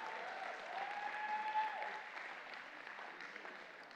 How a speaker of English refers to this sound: And that's a good place to give Him a hand clap and a yay, God.